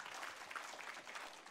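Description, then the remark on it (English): An audience applauds a man again after a prayer, in worship, in a steady, dense wash of clapping that stays fairly even and moderately loud throughout, with no voices standing out above it. “Can we applaud him one more time and worship in the house?”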